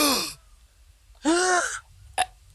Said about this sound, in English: But as he does so, a gasp from the crowd.